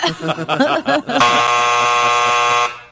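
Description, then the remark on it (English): A person talks briefly, then a loud, harsh buzzer blares in one sustained, steady tone for about a second and a half before cutting off abruptly. “Hit the buzzer now.”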